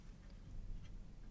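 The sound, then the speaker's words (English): Faint, soft ticking of a clock, a few light clicks at a steady pace over a low background hum, with no voices present. “there's just those clocks again.”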